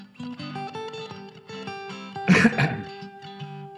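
A short, harsh cough, with a quick second burst right after, breaks out over soft, steady melodic music that keeps playing underneath.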